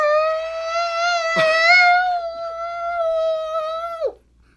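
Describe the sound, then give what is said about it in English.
A voice mimics a stadium crowd doing the wave: one long, loud, high-pitched 'wooo' held steadily for about four seconds, with a brief breathy rush early on, before sliding down and cutting off. “Yeah, that was the crowd doing a nice wave.”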